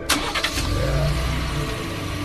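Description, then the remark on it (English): A personal truck's engine cranks with a short starter whir, then catches and settles into a loud, steady low rumble, running throughout. “Here, start her up.”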